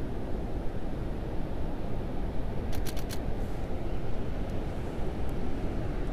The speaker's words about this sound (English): At least hope you're enjoying the sounds of the ocean and me just kind of talking through the trip a little bit.